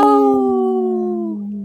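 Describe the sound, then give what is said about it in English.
A single long, loud wolf howl in a sponsor spot for Howling for Wolves, holding a steady tone that sinks gradually in pitch before trailing off after nearly two seconds, with no other sounds around it. “This portion of the show is supported by Howling for Wolves, protecting wolves for future generations. Howl!”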